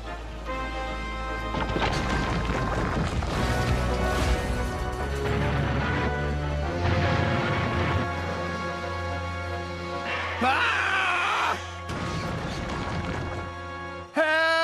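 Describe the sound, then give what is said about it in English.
An old, out-of-control tramp steamer runs aground into a pier shed at Brendam Docks on a stormy night: a sustained, loud stretch of crashing, grinding impacts layered over dense tonal music, with a harsher burst near the end and no talking. “that same tramp steamer ends up running into the pier.”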